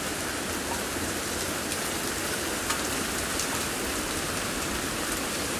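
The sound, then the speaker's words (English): Steady rain falls outdoors over fields on a summer evening as storms pass by, in a dense, even hiss, with constant patter across the whole clip and no voices or thunder. “We're sitting outside and we're looking at the clouds as we watch storms pass by across the fields.”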